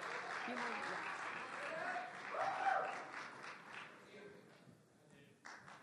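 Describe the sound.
An audience applauds a volunteer coming up to help with a presentation, with a dense wash of clapping that swells around the middle, then thins out and fades toward the end, with a few scattered claps and murmuring voices.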